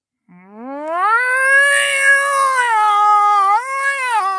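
Two cats fighting at night: a loud cat yowl rises from a low moan into a long, wavering howl lasting several seconds, alone with no talking.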